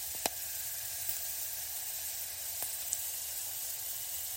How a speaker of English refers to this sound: And you will hear them crackling imperceptibly while you're toasting them. It is a sign you can pour in the wine.